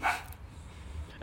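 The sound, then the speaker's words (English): A dog next door gives a single short bark at the very start, somewhat muffled, followed by quiet low room rumble with no talking. “I think the dog next door wants to be a guest.”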